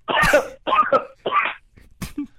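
A loud coughing fit: three harsh, raspy coughs in rapid succession, a brief pause, then one final sharp cough, with no talking.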